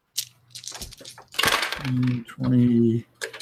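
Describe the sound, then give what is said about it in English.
Dice rolled during a tabletop role-playing game rattle and clatter across a hard tabletop in a quick burst of sharp clicks, followed by a loud, drawn-out voiced exclamation and some talking. “Woo! My dice decided to heat up.”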